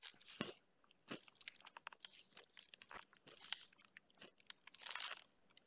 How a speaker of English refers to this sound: I can't have no snack. Bro, you up here ruffling and crunching.